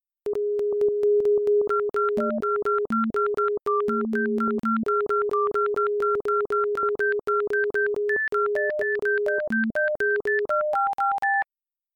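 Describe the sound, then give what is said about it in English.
A data sonification of electronic beep-like tones stepping between pitches, each pair of tones a year, the high note's duration relative to the low note comparing the highest bench press for women to that for men: a sustained mid tone interrupted by brief lower notes, rising to short higher notes, without voices. “The duration of the high note relative to the low note is a comparison of the highest bench for women to the highest bench for men for that year.”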